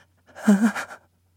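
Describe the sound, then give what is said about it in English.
A short, fearful-sounding breath demonstrating the breathing pattern research subjects showed when they felt afraid: one quick, shaky pant lasting under a second, airy and hissy with a faint low voiced tremble, moderately loud and heard alone with no talking. “For example, when the subjects felt afraid, the breath sounded like this.”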